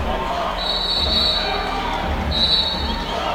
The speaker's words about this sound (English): And the whistle sounds, and everybody comes out of their timeout.